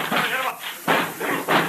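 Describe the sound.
A door is battered and forced in by a group of men rushing at it in a factory at night: loud crashing impacts land in quick succession, with a raised voice heard briefly at the start.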